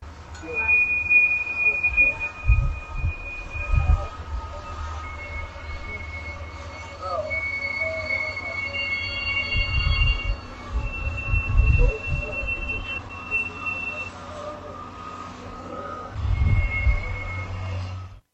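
Train wheels squeal in long, high sustained tones over a deep rumble of rail cars, with several overlapping screeches drifting in and out across a busy rail yard where cars are resorted between eastbound and westbound trains, heard from a 7th-floor observation deck.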